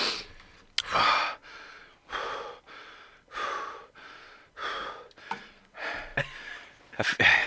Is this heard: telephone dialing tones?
no